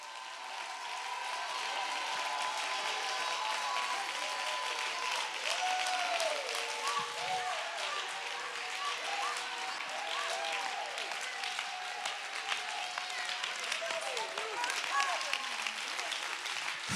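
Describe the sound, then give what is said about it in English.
A crowd claps steadily and loudly for the whole stretch while many voices shout and cry out over the dense applause, rising and falling in excited, overlapping calls, as people clap their hands and lift their voices to the Holy Ghost. “You ought to clap your hands and see how loud you can lift your voice to the Holy Ghost right now.”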